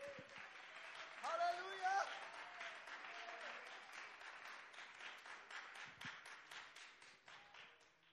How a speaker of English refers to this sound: Let's clap our hands to the Lord with all of our might.